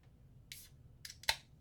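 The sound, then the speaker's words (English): A bottle of beer brewed with barley, lactose, hops, and natural orange and vanilla extract being opened: three short, bright hissing bursts of escaping gas, the last ending in a sharp crack, over a low, steady background hum. “I like that sound when I hear it on like pints and growlers when they're pouring a beer all the time.”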